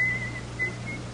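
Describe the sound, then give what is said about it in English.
A guard in a British prison whistles as he approaches, a thin, high whistle carrying a slow, wavering tune of a few sustained notes, moderately faint, over a low steady background hum with no voices. “I hear the guard coming. He's whistling. He's always whistling.”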